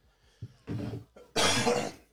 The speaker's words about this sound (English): I'm all for it. Excuse the cough.